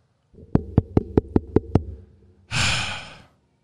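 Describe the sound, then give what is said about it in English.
Six quick, even knocks rap on a door in a steady rhythm, followed by a loud breathy exhale like a sigh. No one speaks. “We're going to knock on this door, and we're going to get this show started.”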